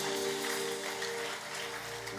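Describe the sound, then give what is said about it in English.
A church audience claps for the Lord during a prayer service in a dense, steady wash of applause that stays loud for the whole stretch, with a sustained musical chord humming underneath and no voices. “Give the Lord a mighty clap in the house.”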